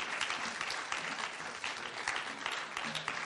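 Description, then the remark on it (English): Steady applause from a church audience clapping in praise of Jesus, many hands clapping in a dense, continuous patter that stays loud and even throughout, with a faint low hum underneath near the end. “Give Jesus a better hand clap.”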